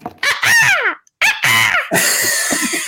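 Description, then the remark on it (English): A person imitates a seagull with two loud, squawking cries that swoop downward in pitch, followed by a harsher, breathy screech trailing off into sputtering. “That's a seagull after that's a seagull after a potato chip being held by a Michigander wearing socks and sandals on the beach.”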